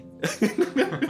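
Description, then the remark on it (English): A quick run of about five harsh, sputtering coughs, close and fairly loud, tumbling one after another in just over a second with no talking. “You take 3 bludgeoning damage to the back and cough and splutter for a few seconds.”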